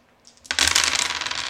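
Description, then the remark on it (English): A big handful of dice tumbles onto a table with a sudden loud clatter, followed by a dense rattle of many small hard pieces bouncing and settling, without voices. “That's a lot what of dice.”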